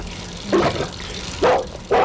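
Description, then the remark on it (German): A young German shepherd puppy, at most half a year old, barks three times while playing with a small boy in front of a house: short, fairly loud yelps with uneven gaps between them, over a low steady background hiss. “Vor dem Haus spielte ein kleiner Junge mit einem Schäferhund, der höchstens ein halbes Jahr alt war.”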